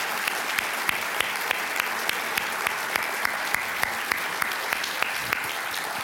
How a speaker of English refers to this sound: Thank you very much. So let's hear applause would be great.